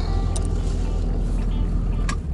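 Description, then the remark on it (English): A truck engine rumbles steadily at a low pitch throughout as the truck pulls up, fairly loud, with a couple of faint brief clicks on top and no clear speech. “I think I need to pull up the trick. He's pushing my trick.”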